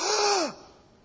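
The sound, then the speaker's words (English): A single sharp, breathy gasp voiced by one person imitating a startled crowd, loud, about half a second long with a falling pitch at its end, followed by quiet. “They sucked wind. They gasped.”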